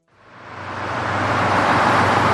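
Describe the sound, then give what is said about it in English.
Dense, steady road traffic noise, made to sound like ten different streets with traffic all around, swells up from silence into a broad, continuous roar with a low engine rumble underneath. No voices. “Noisy, please give us the traffic noise once again. Now, make it sound like 10 different streets with traffic around us.”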